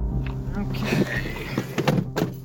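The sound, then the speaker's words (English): A few hollow knocks land on the door of a house in Lubbock at uneven intervals, over a low steady hum with faint voices murmuring in the background. “Okay, we can just walk right up, knock on the door, and...”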